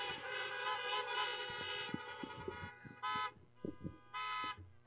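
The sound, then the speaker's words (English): Several car horns honk together outdoors in a sustained, overlapping blare for about two seconds, followed by two separate short honks, with some background noise; people honk to bless departing families at a religious gathering. “Let's honk and bless these families and tell them how much we love them.”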